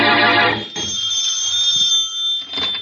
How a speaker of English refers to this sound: And in the Bromley home, the phone rings.